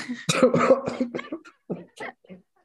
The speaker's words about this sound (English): I have a cold right now. You can't make me laugh and cough like that.